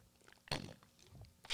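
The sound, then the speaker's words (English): A sharp crunch close to the microphone, like a bite into something crisp, tails off into quieter chewing sounds, then a second crunch starts right at the end, an ASMR-style chewing demonstration. No one speaks. “I thought because I saw it was like people chewing a lot and that kind of thing, or like drinking water.”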